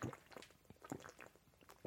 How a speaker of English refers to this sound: That's for him drinking water.